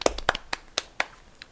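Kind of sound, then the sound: human body sound, hand clap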